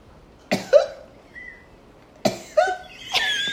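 A loud, exaggerated cough performed theatrically: two harsh hacking bursts a couple of seconds apart, then a rasping, drawn-out third, with no talking.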